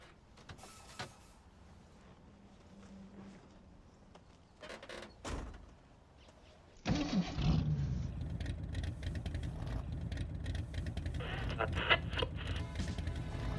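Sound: car engine starting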